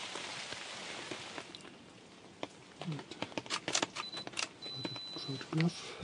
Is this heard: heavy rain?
yes